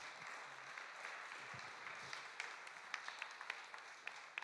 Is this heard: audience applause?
yes